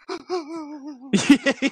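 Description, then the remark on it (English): A voice imitates the shuddering breathing heard on an iPhone recording of the movie Endgame: a long, wavering, trembling voiced breath followed by several quick, choppy gasping breaths, fairly loud. “my shuddered breathing.”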